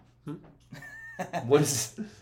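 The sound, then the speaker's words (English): A short, high horse neigh rises into a breathy, wavering whinny, then ends in a rough snort-like burst, all within a couple of seconds. “We're getting the wind horse.”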